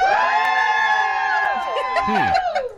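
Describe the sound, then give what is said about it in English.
At a gender reveal, family members who guess the baby is a girl cheer loudly for about three seconds, with overlapping high-pitched shouts and whoops blending into one sustained roar of voices. “Okay, if you think I'm having a girl, cheer.”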